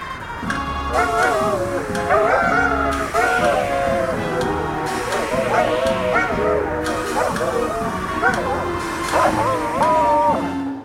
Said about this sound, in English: That was pretty good, but you can't hold a candle to the sound of yodeling Arctic foxes.